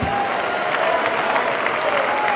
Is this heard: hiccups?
no